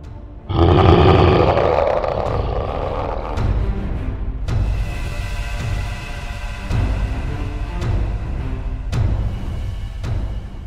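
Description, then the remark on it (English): A huge, deafening roar from a large crested beast with fangs, throwing its head back as it rises to its feet, bursts out loud, holding for a few seconds before fading into a lingering, rumbling growl and low background noise. “It threw its head back and let out a deafening roar.”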